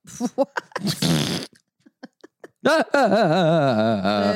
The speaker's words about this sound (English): Farts are funny.